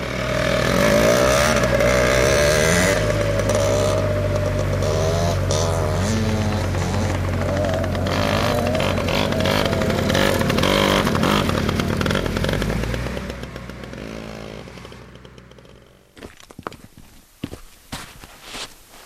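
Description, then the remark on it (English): Loud off-road vehicle engines rev and whine with rising and falling pitch for several seconds, then cut out abruptly, leaving a few scattered crunching footsteps and clicks. “Riders are pushing to open more land, including parks, to these vehicles.”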